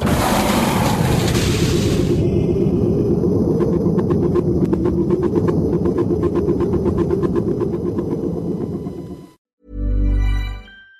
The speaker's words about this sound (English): Evacuation procedure initiated. Shuttle set for launch. Airlock will be opened in 3, 2, 1.